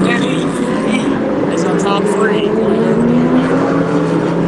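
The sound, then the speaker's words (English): Loud Porsche race cars, driven by Weitzel and Bowden battling for the lead, roar past on a track, their pitch climbing as they accelerate through the gears, with a steady wash of engine noise and faint talk underneath. “And it got a great battle at the front with those Porsches with Weitzel and Bowden.”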